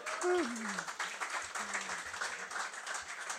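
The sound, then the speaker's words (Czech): Audience applause: a steady, dense patter of many hands clapping that holds for the whole few seconds, with a short vocal sound rising over it near the start. “Jo, zatleskejte mu, je to dobrý.”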